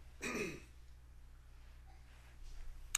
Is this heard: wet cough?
yes